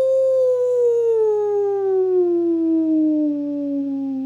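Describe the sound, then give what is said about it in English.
A dog lets out one long, loud, mournful howl that slowly slides downward in pitch over about four seconds, with a faint steady hum underneath. “for sure, the sound of the hair dryer hurt my ears, and if I had vocal cords, I would have howled like this.”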